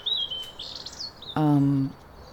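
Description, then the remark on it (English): A European robin in the UK sings a thin, high warbling phrase of liquid, wavering notes, followed by a brief low droning tone lasting about half a second, with quiet outdoor background. “Okay, so we're going to start with a robin, which is the second most common bird in the country, in the UK, and really widespread.”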